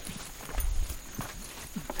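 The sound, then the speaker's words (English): A small rail cart clatters along the narrow tracks of a revived old timber company rail line that firefighters and scientists use to reach a forest research station, giving a steady rhythmic clacking over a low rumble, with no voices. “In the wet season, the little rails sit above the water. This is how firefighters and scientists get in to their forest research station.”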